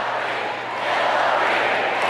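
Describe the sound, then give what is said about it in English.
A large convention crowd chants "Hillary" while Bernie supporters boo her, in a dense, sustained roar that swells slightly midway and holds steady, with no single voice standing out. “Okay, so the reason that people start chanting Hillary here, we can stop it there.”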